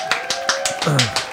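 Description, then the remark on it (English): A short burst of steady, evenly spaced claps from an applause sound-effect button, about five per second and crisp, with a voice briefly murmuring underneath partway through. “He was like, oh no, and he hits the applause button.”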